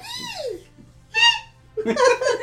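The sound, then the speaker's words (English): Voices imitate a squeaky fairy fart: a high, sliding squeal that drops in pitch, a short squeak, then a louder, raspier sputtering burst. “But can we get everyone to try to do a squeaky fairy fart noise?”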